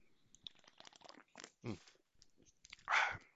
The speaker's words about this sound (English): You know what? I could easily edit out the sips, but I don't want to because this is about the realest podcast you'll ever listen to, people.